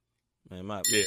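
bell ding sound effect

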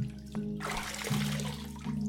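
water splashing

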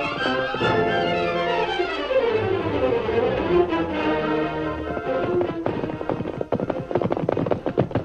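horses galloping

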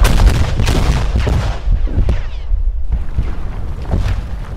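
explosions

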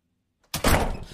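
door slammed shut

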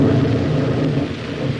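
plane crashing and exploding

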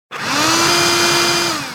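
robotic vacuum cleaner running

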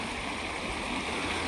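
creek water flowing

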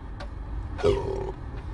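burp

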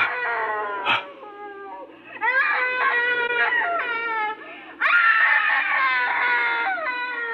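woman screaming

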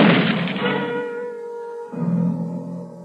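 gunshot

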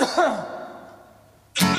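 cough

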